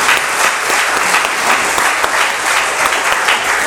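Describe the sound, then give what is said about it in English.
A steady round of applause from a crowd for former members of a church Luther League group, many hands clapping in a dense, even wash of sound that stays loud throughout without any voices. “We need to give them another round of applause.”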